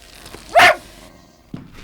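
Oscar, a medium-sized cocker spaniel, gives one sharp, loud bark, followed a moment later by a shorter, softer yip against a quiet background, in a fifth-floor room of the Grand Hotel Kaiserhof.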